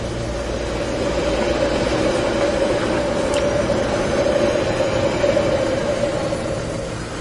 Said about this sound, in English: We'll let that train pass.